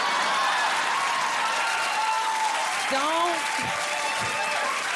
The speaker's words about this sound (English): See all them short men clapping? They amazing.